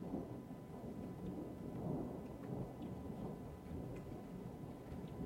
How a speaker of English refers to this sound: Here comes the rain. This is whiskey drinking sounds. This is when you hunker down and just sit with one another. Oh, it's cold out there.